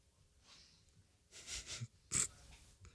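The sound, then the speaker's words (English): A dog sniffs and snorts in a few short breathy bursts, ending with one sharper, louder snort, with no talking over it. The dog is being told to lie down. “Jordan May, can you lay down? Who knows? Lay down. Dog.”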